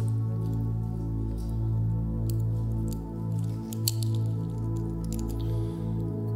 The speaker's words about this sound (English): So if you would, go ahead and take your self-serve communion cup, peel back the top layer.